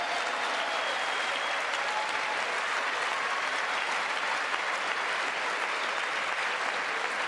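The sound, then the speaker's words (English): Sustained applause from a large audience at a speech, including Republicans such as Mitt Romney, after a line about capping the cost of insulin at $35: a dense, steady roar of clapping at fairly even loudness with no voices standing out. “Take note of the Republicans clapping.”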